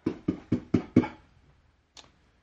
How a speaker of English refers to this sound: He knocks on the door.